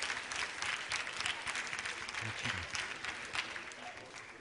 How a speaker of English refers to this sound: Thank you, men, for joining me. Hallelujah. Give the men a big shout, a clap offering.